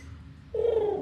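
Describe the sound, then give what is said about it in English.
A voice imitates a sleeping owlbear snoring: after a brief quiet stretch, one sustained, gently falling, coo-like hum rises out of the low background noise and holds for about half a second. “Can I you hear it snoring? Wait, can I do a...”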